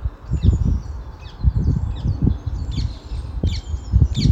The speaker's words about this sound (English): That's a parakeet. But I can hear hundreds of little dicky birds.